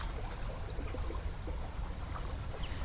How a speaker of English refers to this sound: And after months of being in my head and being inside, getting in the river was something else. It's very short, but it was what it felt like.